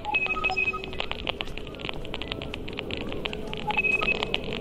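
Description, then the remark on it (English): Sonified Wi-Fi data captured with hearing aids from the Phantom Terrains project: sharp electronic clicks tick at an uneven, shifting rate, faster for stronger Wi-Fi signal, over a steady low rumble, while short high-pitched robotic beeps marking router ID numbers chirp in brief clusters at the start and near the end. “Faster clicks mean higher Wi-Fi signal strength. And these robotic beeps are the router ID numbers.”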